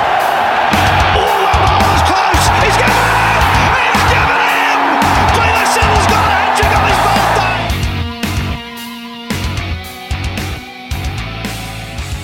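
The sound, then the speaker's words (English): A large cricket crowd roars and cheers loudly for about eight seconds over a thumping beat after Chris Lynn hits the ball onto the roof, then the cheering drops away and upbeat music carries on alone. “Crowd cheers.”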